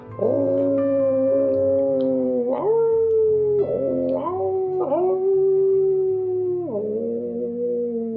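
Several wolves howl together, their long, wavering cries rising and sliding in pitch as they overlap continuously over a low steady hum, fairly loud, with no talking.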